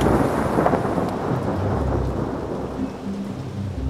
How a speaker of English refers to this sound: growing series of rough weather systems to pass through the Bay Area brought not only strong winds and rain, but thunderstorms and even hail early. A Saturday's storm that brought historic rain to San Francisco and turned streets into rushing rivers.